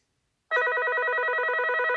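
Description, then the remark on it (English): A telephone rings loudly and steadily, starting abruptly after a brief silence, its bright warbling bell tone continuing without pause and no voices present. “Hang on. What's this? Sorry, folks. Just go onto the phone.”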